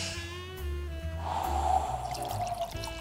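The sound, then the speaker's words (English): Rosé wine pours steadily into a glass for a few seconds, a continuous gurgling splash with a faint low hum underneath and no talking. “He's in with Hamish now, pouring.”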